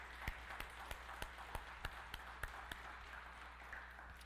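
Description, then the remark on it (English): An audience claps hands in praise of God, a dense wash of applause with a few sharper claps landing in a steady rhythm about three per second, fairly soft and with no talking. “Can we just pause right here and give God a hand clap of praise for how amazing he is?”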